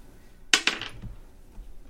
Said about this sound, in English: Good dice rolling sounds on this episode.